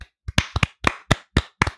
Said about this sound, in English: A round of applause for them, please.